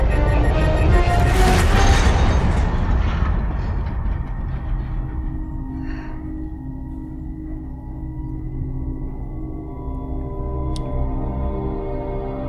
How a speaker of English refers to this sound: So they just got grabbed by a tractor beam. From the USS Europa.